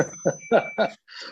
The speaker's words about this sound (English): Sorry, that's my 300-year-old clock going off.